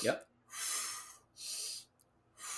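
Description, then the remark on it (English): Forceful breaths pushed out through the mouth, loud: three rushing, hissy bursts of air, each about half a second, separated by brief pauses, with no talking. A person demonstrates breathing out while pushing during a bench press in strength training. “So if I'm doing a bench press, I'm breathing in. And now I'm ready to push out. I push out with my breath.”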